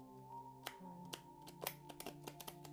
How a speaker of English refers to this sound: I do have a really hard time. I have been getting a little bit better, but I'm not that great, but I do try to shuffle as much as I can, so that way I'm getting a great shuffle in there. I'm doing it again.